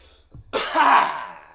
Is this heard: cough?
yes